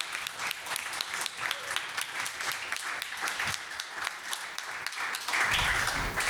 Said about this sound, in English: round of applause.